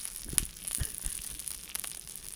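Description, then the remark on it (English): Grease sizzles on cooking cheese, a steady soft crackling hiss broken by a few sharper pops, fairly quiet, with no voices. “Is that cheese sizzling? That's grease. That's just pure grease?”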